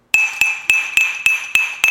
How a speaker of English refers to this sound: On the West Coast, yeah, as I said, it's 4 o'clock, 7 o'clock in New York, East Coast, and you'll be banging some pots right about now.